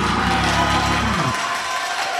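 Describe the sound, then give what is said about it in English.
A large crowd claps and cheers loudly and continuously, with a sustained low musical tone underneath that cuts off partway through while the applause carries on. “Now start clapping your hands because God's setting the table.”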